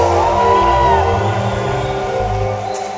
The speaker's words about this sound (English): Put your hands together for the Lord. I cannot hear your hand clap because we are about to add a shout. A shout and a hand clap. Put your hands together for Jesus.